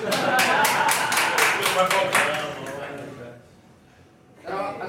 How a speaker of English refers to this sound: No laughter, just claps.